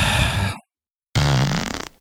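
Two loud, buzzy fart sounds with an unnaturally steady, pitched, auto-tuned tone, separated by a brief silence. The second blast runs longer and wobbles before cutting off.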